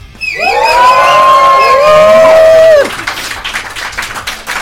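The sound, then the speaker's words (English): A live audience at Columbia University in New York City lets out a loud, sustained roar of many voices for about two and a half seconds, pitch sliding down at the end, then dissolves into scattered cheering and clapping. “Let's hear you lions roar.”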